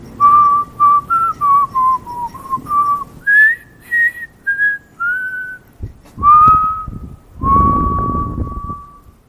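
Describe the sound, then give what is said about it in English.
Someone whistles a short, wavering tune in an echoey tunnel, a string of separate notes that rise and fall, ringing slightly, with some rustling noise under the final notes. “when they patrolled those corridors, they would hear the whistling”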